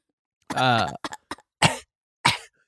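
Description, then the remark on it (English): A person lets out a series of forced, deliberate coughs: a drawn-out raspy one, a few quick short hacks, then two sharper, louder coughs spaced apart, clear with no talking. “I think I have a fever. I'm coughing.”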